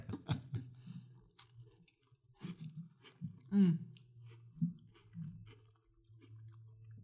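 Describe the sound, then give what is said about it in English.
Crunchy chewing of a cracker topped with Gournay cheese during a cheese and wine tasting, with irregular crisp bites and soft mouth clicks repeating over several seconds, fairly quiet. “So I'm going to ask you to take a bite of the Gournay cheese that I placed on the cracker for you, and then follow it up with a sip of this delicious wine.”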